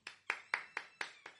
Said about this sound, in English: I can accept that hand clap.